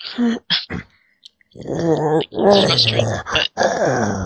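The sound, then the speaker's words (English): A person vocally imitates a dog's whimpering growl: a few short breathy whines, a brief pause, then a longer wavering, throaty growl-whine delivered fairly loud. “… will do a whimper growl type of sound.”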